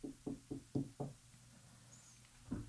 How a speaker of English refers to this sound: There's a knock at your door.